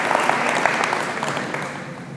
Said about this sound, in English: Can you guys give him a round of applause real quick? Thank you so much, you guys. Excellent work.